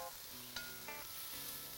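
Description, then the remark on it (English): One cup of regular green lentils and vegetables sizzle steadily in a pan as they are sautéed together, with a couple of brief scraping clicks from a utensil stirring them. A continuous, hissing fry with no voices. “So 1 cup of lentils right into the veggies. And just stir that up and saute it all together.”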